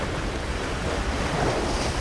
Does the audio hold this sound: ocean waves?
yes